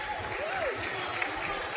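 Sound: basketball crowd cheering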